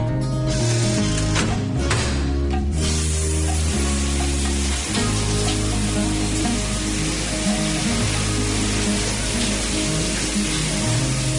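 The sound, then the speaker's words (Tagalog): A shower runs cold water steadily, its spray a continuous loud hiss, with a low droning hum underneath for the whole stretch and no voices. “Mom, the shower's cold.”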